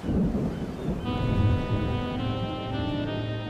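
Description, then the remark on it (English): Deep rolling thunder rumbles over a steady hiss of heavy rain during a storm at sea, with a sustained high whistling tone, like wind, joining after about a second. The storm fills the whole scene. “We'll be safe enough, but you never know about storms at sea.”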